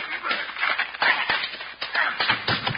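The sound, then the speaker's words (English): A chaotic fistfight scuffle between men: shuffling feet and rustling bodies, punctuated by several sharp, heavy thuds of blows landing as a man is knocked down, with no voices in between. “Knock my partner down, will you?”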